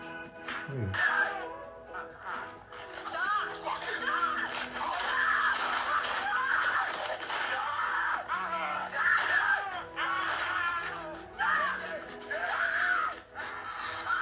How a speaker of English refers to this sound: She's screaming for me.